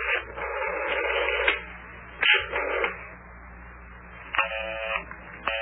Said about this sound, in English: Is everybody talking on the telephone to one another? Boy, every number I dial is busy.